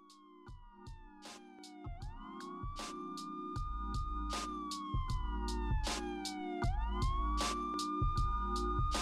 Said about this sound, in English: Now, here come the sirens.